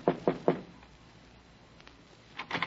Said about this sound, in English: A sad old biddy with a mop told me Condano was in his office, so I knocked on the door.